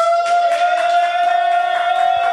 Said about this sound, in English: So, we're going to do applause. You can cheer for one only. Make a lot of noise for the first choice. Enter the Dragon.